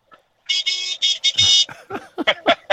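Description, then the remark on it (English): A van horn honks in a quick run of about five loud, high, nasal beeps, tinny and toy-like, and then a person starts talking right after. “It sounds like he's in a clown car.”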